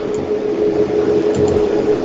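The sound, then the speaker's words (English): A dehumidifier runs loudly, a constant droning hum with a steady tonal whine over broad airy noise, unchanging throughout and with no voices. “I got my dehumidifier.”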